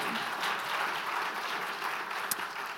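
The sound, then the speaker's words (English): A steady round of audience applause, dense and even, with many hands clapping at once in a continuous wash of sound lasting a few seconds. “Can give them a better round of applause.”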